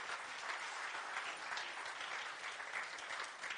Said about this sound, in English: Come on, give God a hand clap of praise.